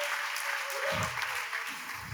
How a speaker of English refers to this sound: One more hand clap today. God's working.